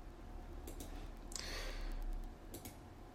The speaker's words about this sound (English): I'm just clicking through here.